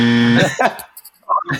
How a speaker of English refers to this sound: Well, you won the buzzer? Here's your buzzer.